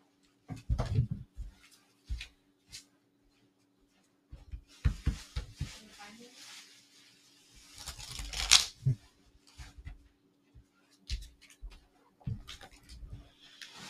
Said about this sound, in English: All right, so let me shuffle up some more.